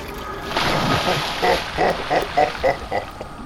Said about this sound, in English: Another fine day, swimming in my sacred water. I drink to my belly's full. I bathe to my heart's content.